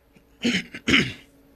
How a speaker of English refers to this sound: So that time I just had to clear my throat. So wasn't a real cough.